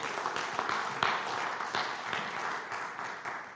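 An audience applauds steadily, many hands clapping in a dense, even wash of sound at a fairly constant level without any voices, welcoming a speaker who has come up to share about the community's children and youth work.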